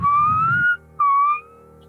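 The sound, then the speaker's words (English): Two clear, low whistled notes of a spell-casting whistle: a long, slowly rising tone, a brief pause, then a shorter steady note that fades out. A soft rumble sits under the first note, with no talking. “It's a kind of low, the...”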